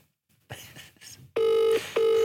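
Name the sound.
phone call ringing tone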